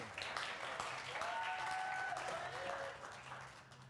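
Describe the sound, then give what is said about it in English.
A round of applause from a crowd, steady dense clapping that holds for several seconds before easing off slightly at the end, with a few faint voices mixed in. “Oh, round of applause,”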